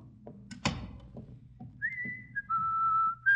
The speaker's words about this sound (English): Do you think you should whistle so loudly, Miss Brooks? We're right outside Daddy's office, you know.